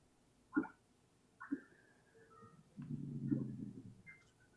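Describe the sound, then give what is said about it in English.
Low underwater grunts from a cod in a hydrophone recording: two short thumping knocks, then a longer rumbling burst of pulsed grunts against a quiet background with no talking. “That's actually cod.”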